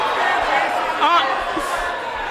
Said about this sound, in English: Now that you know the final vote tally, anyone want to change it? Oh, they're yelling again.